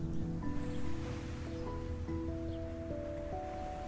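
A soft, steady wash of ocean waves rolls along, quiet and continuous, with sustained tonal notes drifting over the surf.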